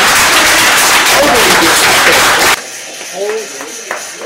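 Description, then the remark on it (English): An audience of Leavenworth citizens, including youth, at a public meeting bursts into loud, dense applause against a woman for about two and a half seconds, then it cuts off abruptly, leaving quieter voices talking. “She's sitting there embarrassed because she just got applauded against.”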